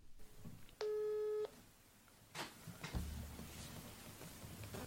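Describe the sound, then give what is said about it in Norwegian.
A single steady electronic telephone ringing tone of an outgoing call sounds for about half a second, loud and clear, followed by quieter line noise and faint background rustle with no speech. “Men vi kan ta en telefon. Ja, skal vi prøve å ringe”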